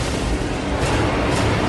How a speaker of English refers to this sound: Okay, so Jake Gyllenhaal's getting on a statement on a plane in an ominous thunderstorm at the minute. Torrential rain. More lightning.